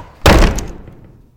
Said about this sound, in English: It wasn't until the doors closed behind me that I realized that I still didn't know what ruler I'd accidentally inspired.